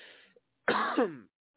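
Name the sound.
coughing and throat clearing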